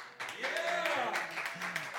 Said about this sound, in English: Yeah. All right, we weren't supposed to clap for that.